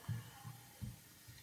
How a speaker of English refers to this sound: Could I get a glass of water from some kind and benevolent soul? Oh, you got water there? Pour away, friend. It looks like water. Sure that isn't gin?